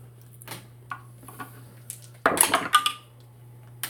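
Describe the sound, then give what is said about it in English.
A few light clicks of dice, then a dense burst of many percentile dice clattering and tumbling across a hard tabletop before settling, over a low steady hum. “That's a lot of dice hitting the table.”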